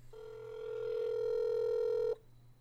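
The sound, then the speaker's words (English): A single ring tone of an outgoing phone call to McDonald's after midnight, one steady electronic buzz lasting about two seconds before cutting off, with no one picking up and no voices. “Does McDonald's have, like a nationwide policy of not answering the phone after midnight?”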